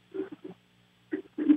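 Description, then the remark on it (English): A person on a talk radio show imitates snoring with a few short, rough, throaty bursts: a quick pair, a pause, then two louder snorts. The sound is thin and muffled, like it's coming through a phone line. “We're waiting for the big snore. Give me a big snore”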